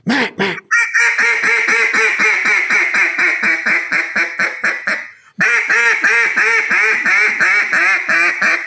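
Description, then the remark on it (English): A duck call blown loud, imitating a mallard hail call: a long, rapid run of raspy quacks, a brief pause, then another fast string of quacks. “Yes, that sounds like a mallard duck. That's a mallard hail call, right?”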